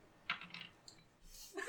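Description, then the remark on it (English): Someone else's dice are rolled and clatter briefly across a table: a handful of quick, light clicks and rattles over about two seconds, fairly quiet, with no voices. “I am now rolling someone else's dice.”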